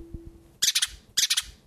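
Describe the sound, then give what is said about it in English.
A female pet bird lets out harsh, angry squawks, two loud bursts of three rapid raspy calls each, separated by a brief pause, with no talking. “What is with the bird right now? She's very vocal.”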